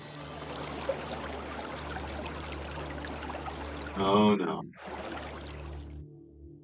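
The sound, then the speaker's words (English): Water sloshes and streams off something as it rises out of the water, a steady rushing pour that lasts several seconds, broken briefly by a startled voice before the water noise resumes. “That sounds like it stood up out of water.”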